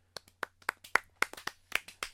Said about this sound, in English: Clap. You got a round of applause. Round of applause. Round of applause because we ended this shit finally.